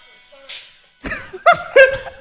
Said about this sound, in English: Alright, here comes the glory shot. Well, he just slapped the ball.